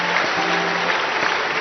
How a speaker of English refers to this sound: Somebody clap for Jesus. Clap for Jesus. Clap for Jesus. Hallelujah.